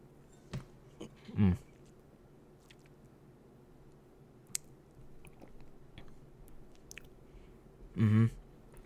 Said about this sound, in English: I'm going to take another sip.